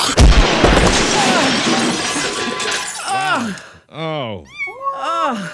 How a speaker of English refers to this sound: Fuck you, cats. You've been fed.